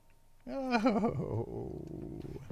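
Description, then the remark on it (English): A dog named Mahler, upset, gives a wavering, whiny rise that sinks into a low, rough growl, rumbling steadily for about two seconds with no talking over it. “Well, Mahler's upset that I was stealing. It's okay, Mahler, really. Don't bark or bite or anything.”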